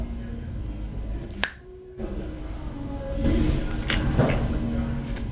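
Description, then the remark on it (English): A single crisp finger snap cracks out sharply against a low background hum, followed by a brief hush, then faint clicks and shuffling noises. “So when I snap my fingers, I want to talk to a different person, and I want to explore the root.”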